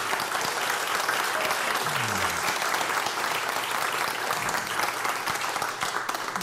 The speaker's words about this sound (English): That's a big round of applause